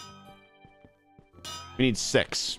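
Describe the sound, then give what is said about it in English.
Hammering in a video game: a few faint, irregular taps over a steady humming tone, then louder, bright metallic clangs ringing out in quick succession. “We need six. We're just hammering.”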